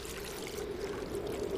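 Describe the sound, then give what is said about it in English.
Water trickles and dribbles steadily from a pointy rock, a continuous wet patter at moderate volume with no pauses and no voices. “First Lieutenant, put your mouth under that dripping rock that is pointy.”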